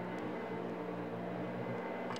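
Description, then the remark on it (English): A vacuum cleaner runs steadily 3 metres away, a continuous motor drone with a broad whooshing hiss and a low hum, unchanging throughout with no voices. “A vacuum cleaner 3 metres away.”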